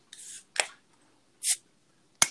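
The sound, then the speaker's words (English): Beer cans being opened: a few sharp metallic cracks and short fizzy hisses come in quick, uneven bursts over about two seconds, fairly loud, with no talking. “Oh, I'm already open. You guys are opening.”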